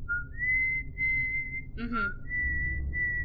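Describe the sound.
A person whistles a slow, sustained melody of long held tones, imitating a song's whistled intro, clear, with a brief warbling break midway; low background rumble underneath.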